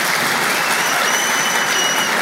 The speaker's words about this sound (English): You know, babies always get applause at a Catholic university. You can count on it.